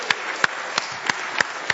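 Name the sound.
audience cheering and applauding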